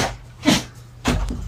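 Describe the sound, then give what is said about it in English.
Two short, sharp dog barks about half a second apart, moderately loud, over a low steady background hum with no talking. “The dogs have arrived.”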